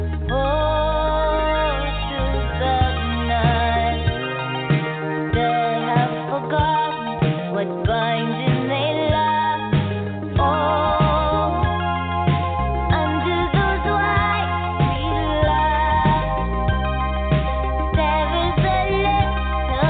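A pop ballad plays steadily at full volume, with a sustained melody over a deep, pulsing bass line and layered instruments. No one speaks over it.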